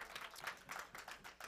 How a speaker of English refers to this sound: Oh, come on and clap your hands for the Lord of glory this morning.